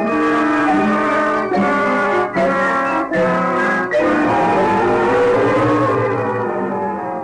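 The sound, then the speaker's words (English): A car drives north on the road, overtaking a bus, with a loud, droning engine hum that briefly dips several times as it shifts through gears, then holds a steady roar. No one speaks. “We drove north and overtook the 1:30 bus after it had traveled a little over 100 miles.”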